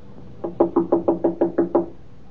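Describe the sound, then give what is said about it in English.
Someone raps on an apartment door at the head of the stairs in a quick, even series of about eight firm knocks, clear, with no voices or other sounds around them. “Open the door, Miss Judson.”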